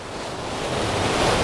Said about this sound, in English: Right, so this waterfall is above the waterfall that I want.